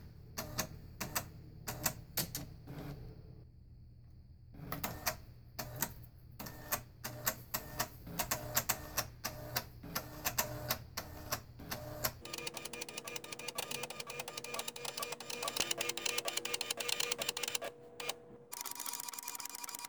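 A printer with a cartridge plugged into a port on its side runs, rattling with rapid mechanical clicks and ticks for several seconds, then shifting into a steadier whirring, buzzing drone. No one speaks.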